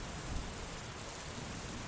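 Steady, heavy rain hisses without a break, with a low rumble underneath that suggests thunder rolling through a storm. No voices are heard.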